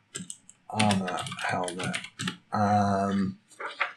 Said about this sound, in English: I'm just typing it in.